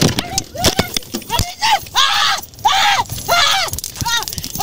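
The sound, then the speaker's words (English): A taser is fired on a woman in a car during an attempted arrest as she tries to start the car, with sharp, crackling clicks in quick bursts, mostly early on, while a person cries out in loud, wavering yells and screams that fill the rest. “For those that's listening. You hear the taser.”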